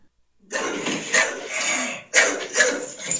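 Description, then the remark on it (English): A frightened dog barks and yelps in several sharp bursts at night, around 10:15, as mortar shells are fired off, with a continuous rough, noisy sound filling the gaps between them. “This was my dog yesterday.”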